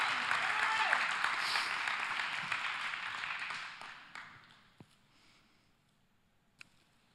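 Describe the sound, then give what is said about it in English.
A crowd applauds steadily during a church service, giving applause to the Lord, with dense, bright clapping that holds for about four seconds, then thins out and fades, leaving a few scattered claps and faint murmuring. “I appreciate that applause to the Lord.”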